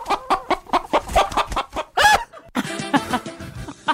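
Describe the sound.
A voice imitates a chicken, giving a quick run of rhythmic clucks, then a sharp squawk and a drawn-out cackle. The sounds are loud, with no other talking.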